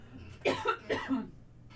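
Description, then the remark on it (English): A few harsh coughs in quick succession, two main bursts with a smaller one between, loud against a quiet room hum with no speech. “Right after that coughing attack and talking about internet addiction.”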